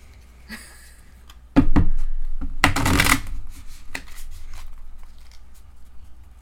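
A deck of cards is shuffled, with a sharp riffle burst followed by softer rustling and a few light flicks as the cards settle, no talking.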